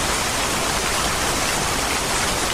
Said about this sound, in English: It was just bizarre, you know. Here we are in the middle of a forest fire and then it's raining buckets.